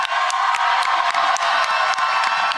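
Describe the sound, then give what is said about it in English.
A crowd applauds and cheers steadily as a guest is introduced, with dense clapping and bright whoops rising over a continuous roar of noise, loud throughout. “Clap, clap.”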